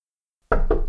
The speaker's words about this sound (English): There came a knock upon the office's door, and then, when the boy made no reply, the door opened, revealing...